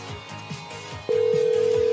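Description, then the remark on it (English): An outgoing call ringing on a phone line to Absolute Pressure Cleaning: soft rhythmic pulses at first, then a loud, steady, mid-pitched electronic tone cuts in halfway and holds to the end, with no talking. “We have two numbers for this person, just in case.”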